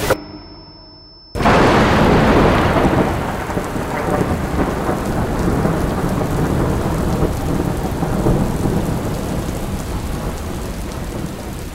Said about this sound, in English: We're at an outdoor music festival. Rain doesn't just come down. It comes everywhere. It comes straight in.